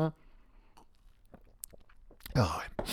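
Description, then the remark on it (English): Quiet sips from a cold drink: a few small wet mouth clicks and slurps, then a louder swallow and breathy exhale toward the end. “I've only had two sips as well.”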